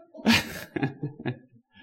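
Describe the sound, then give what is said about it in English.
A single loud sneeze bursts out near the start, after eating spicy food, followed by a few softer breathy huffs and sniffs trailing off. “Drinking water, eating yogurt, coughing, tearing up, and sneezing.”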